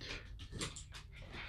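A dog pants in quick, breathy bursts with a short whimper mixed in, soft, with no talking, while playfully attacking a man during play.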